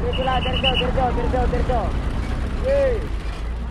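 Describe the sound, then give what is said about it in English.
Garbage trucks, arriving every few minutes, unloading at a massive dump site on the outskirts of Manila, Philippines, heard as a loud, steady engine rumble with a rapid run of squeaky, ratcheting mechanical clicks, a brief high whine and a swooping metallic squeal. “Here, trucks roll in every few minutes to unload garbage from Metro Manila's 12 million residents.”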